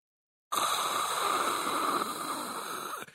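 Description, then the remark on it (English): A voice imitates white noise with one steady, breathy hiss that starts abruptly, holds at an even loudness for about two and a half seconds, then cuts off. “go around and we'll do like who has the best white noise impression.”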